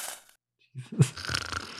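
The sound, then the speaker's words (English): A person mimics a snore with their voice: a short, rough, nasal rattle after a brief pause, fairly loud, followed by a breathy exhale. “I don't know if you snore if you're that passed out.”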